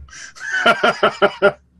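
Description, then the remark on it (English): A chicken clucks: a short rising call, then five quick, evenly spaced clucks in a steady rhythm, with no talking. “Yeah, well, I mean, he can get the chickens to come to him with treats.”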